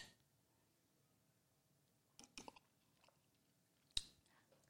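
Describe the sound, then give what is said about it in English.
Someone quietly sips a whiskey sour: a brief cluster of soft slurping mouth sounds, a fainter one after, then a sharp little click, with no talking. “So let's take a sip to that, toast to that, and then we're going to take the Hibiki straight up because that is expensive bottle.”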